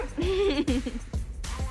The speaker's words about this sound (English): Now, Bit and her Yorkie are there at the photo shoot. Uh-huh. Does the dog need to go out? He just went.